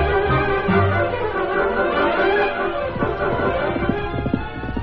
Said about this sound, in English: And the horse is running away! Come back! That horse is wild!